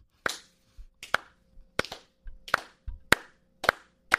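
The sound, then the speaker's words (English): A slow clap: seven sharp, crisp hand claps at a steady, unhurried pace, each about two thirds of a second apart, with no voices in between. “I mean, I'd be down for a slow clap, and if y'all were down for a slow that clap died quick.”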